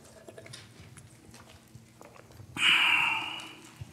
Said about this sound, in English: Going easy on this water. It's just a couple sips left. We'll see. When I run out of water, I keep preaching, though.